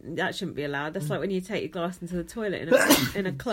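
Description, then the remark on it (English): A single sharp, loud sneeze bursts out near the end, right after someone finishes talking in a casual conversation. “Excuse me. Bless you.”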